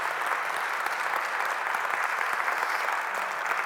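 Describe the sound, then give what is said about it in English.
An audience at the first church service of the year claps as praise to God, a dense wash of many hands applauding at once, sustained and fairly loud throughout with no voices standing out. “Come on, let's give God a hand clap of praise for that.”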